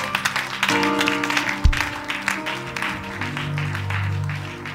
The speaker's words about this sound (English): Clap your hands.